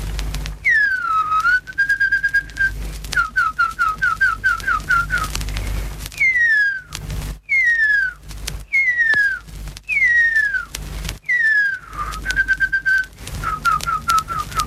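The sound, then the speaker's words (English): In a studio, a man whistles an imitation of the male huia's call, a native New Zealand bird believed extinct: loud, descending slurred whistles alternating with quick runs of short repeated notes, with no talking. “The male bird calls with the following notes.”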